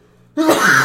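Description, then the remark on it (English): A single sneeze bursts out suddenly after a moment of near silence, a loud, breathy, hissing blast that fills the rest of the moment with no talking. “bless you.”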